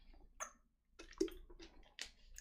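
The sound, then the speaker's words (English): Someone takes a few quiet sips of water, with soft slurps and a swallow in short bursts and no talking. “Let me get a little thirst of water here.”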